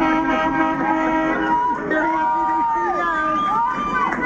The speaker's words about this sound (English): As the giant white cruise ship tied up at a remote dock in Oakland's Outer Harbor, passengers waved and cheered from their balconies. One shared this video with KCBS as those aboard reacted to truckers at the port honking in support.